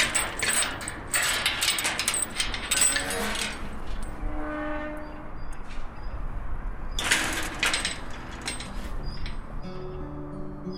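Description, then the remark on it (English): A gate creaks open in a few drawn-out, wavering squeals, mixed with metallic clanks and rattling, as people arrive at a growing space in Dublin 8 on a chilly Saturday afternoon in late February. No one speaks. “The creaking of the gate announces their arrival.”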